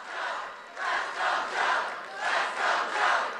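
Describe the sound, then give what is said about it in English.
A crowd cheers and shouts in loud, surging waves, the roar of many voices rising and falling in a rough chant-like rhythm throughout, cheering about insulin being limited to $35 a month. “Hey, they're cheering insulin.”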